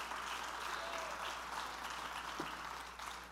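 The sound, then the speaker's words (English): A church audience claps their hands to thank God for a second chance and mercy, a dense, steady wash of applause that holds at an even loudness for the whole few seconds, with no voices standing out. “Let's clap our hands and thank God for a second chance and mercy.”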